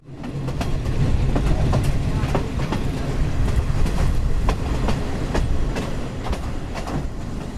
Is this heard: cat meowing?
no